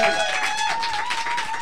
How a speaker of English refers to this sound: Can we have a massive round of applause and some whoops and some hollers and a bit of stamping as well? Let's appease the ghost.